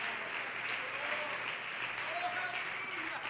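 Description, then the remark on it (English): A church audience claps steadily and densely throughout in praise of the Lord, a sustained wash of many hands applauding together at even loudness, with faint voices calling out underneath. “And can we clap our hands and praise the Lord one more time?”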